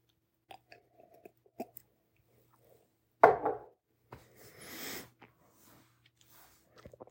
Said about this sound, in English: Damn, that's good. I'm about to go back for another sip. Give you all a fair review here.